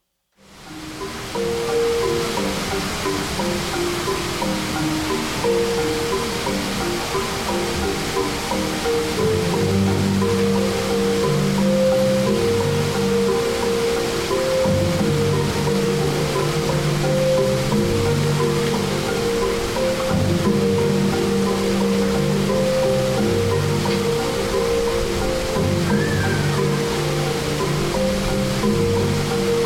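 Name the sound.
flowing water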